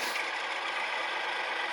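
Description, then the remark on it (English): A tractor engine runs steadily throughout, a continuous, even mechanical roar with a bright, hissy edge and no pauses or changes in pace. No one speaks. “Tractor. That's a tractor.”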